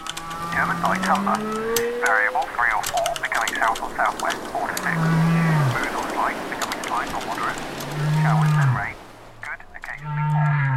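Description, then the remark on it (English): Low, drawn-out whale moans swell and slide several times in a mix from an online ambient noise generator. They are layered over busy keyboard clatter, a steady rain-like wash and an indistinct murmuring voice in a dense ambient blend. “a blend of, say, whale noises, clattering keyboards, and the shipping forecast, then Ambiphone can serve that up”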